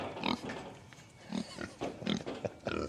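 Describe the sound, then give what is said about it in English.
A pig grunts repeatedly on a farm in Surrey, a series of short, snuffling bursts at an uneven pace, moderately loud, with no one talking. “Whereas the pigs are just always your friend.”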